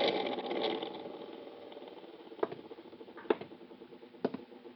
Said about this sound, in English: I'll turn on the overhead fan. Pretty stuffy in here.